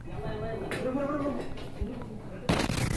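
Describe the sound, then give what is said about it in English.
A voice talks briefly in a played video before a sudden, loud explosion of set-off explosives bursts in near the end, its harsh roaring blast and shockwave filling the remaining moments. “So, bro, roll of quarters, explosives, go over there, blow up that, and then videotape it, show it to the brothers.”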